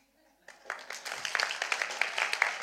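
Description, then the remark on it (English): A church audience bursts into applause after a brief quiet moment, many hands clapping at once and quickly building into a dense, steady, bright patter that stays loud to the end. “One of the things we try and do in church is we say, if one claps, all clap.”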